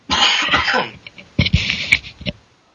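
A harsh, wet coughing fit, loud, with a long rough burst followed by a few shorter hacking coughs and a throaty clearing at the end, no talking.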